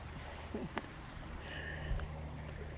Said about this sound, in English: Oh yeah, there it is. Yeah, there's just a bit of a little stream that goes along through town here. I don't know if you can hear the water going.